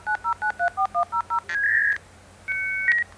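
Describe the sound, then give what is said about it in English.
A dial-up modem dials out with eight quick, evenly spaced touch-tone beeps, then emits steady, clear electronic tones as it starts to connect to the internet. Distinct, with no voices. “That is the sound that over 2 million people in the U.S. still hear when they want to get on the internet.”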